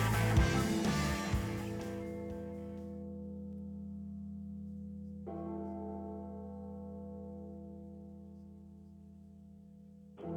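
A deep church bell tolls slowly, three strikes about five seconds apart, each ringing out loud and fading in a long resonant hum, with no voices; it opens a rock song played as a walkout song on the radio station WJQS The Fan.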